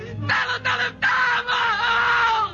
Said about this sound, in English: Because out in front on the sidewalk lay what once had been a man. Look at him. Both his hands are blown off at the wrist. One leg's in shreds. A piece of shrapnel's ripped open his stomach. Yet he screams. Like he screams words.